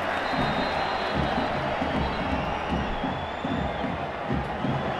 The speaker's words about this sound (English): And the crowd are really responding to that, despite the fact they're getting a proper old soaking.